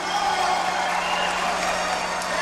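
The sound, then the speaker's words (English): A crowd at New York's Grand Central Station applauds as a group of Iranians hands a Persian rug as a gift to a group of Americans, a dense, even wash of many hands clapping at once with a faint murmur of voices mixed in, holding level for the whole stretch. “At New York's Grand Central Station very often, a group of Iranians handing a Persian rug as a gift to a group of Americans, and a crowd applauding the move.”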